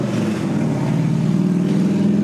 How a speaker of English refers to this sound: It's a nice day. You're riding your motorcycle. I assume you're going to cut the chopper noise out.